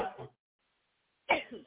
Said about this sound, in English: So that means if you ingested poison in a dream, you need to be coughing it out now from your gut. Amen? I don't remember the dream. You don't have to just cough it out.